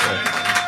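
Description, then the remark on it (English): A brief burst of audience clapping for Jesus, a dense, steady patter of many hands with no voices, cut off after less than a second. “Clap for Jesus.”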